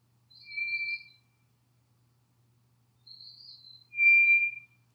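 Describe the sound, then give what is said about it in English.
A scaly thrush calls twice with long, thin, eerie whistled notes, the second louder and slightly higher, separated by about two seconds of near silence. No voices. “So, its cry sounds like that of the scaly thrush.”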